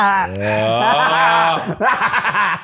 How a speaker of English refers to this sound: Has the toddler finished mewling yet?